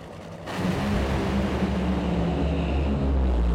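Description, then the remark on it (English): After a brief quiet moment, a thunderous, sustained engine roar erupts as nitro funny cars and top fuel dragsters run in the nitro finals, including the Funny Car Trophy final between Ron Capps and Hagen. It is a deep, rumbling blast that stays loud throughout, with no talking. “Bring me the funny cars. Bring me the top fuel cars. Let's listen.”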